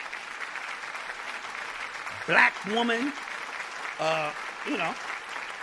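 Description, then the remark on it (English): Steady clapping on the Urban X show, applauding the movie Queen and Slim, fills the whole stretch, a dense, even patter, while a couple of voices speak briefly over it. “And let's clap that up.”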